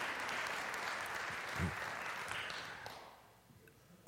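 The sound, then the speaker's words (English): A crowd gives a hand clap of praise to Jesus, a dense, steady wash of overlapping handclaps that holds strong for about three seconds, then thins and fades as scattered claps trail off. “Come on, let's give Jesus a hand clap of praise.”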